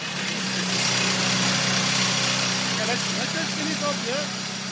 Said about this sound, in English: a gentleman turned up with the most incredible drill, more than a metre long, and he began to make holes so he could plant charges to blast out more ore for processing.